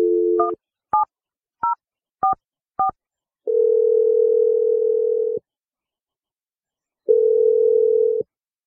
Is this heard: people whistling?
no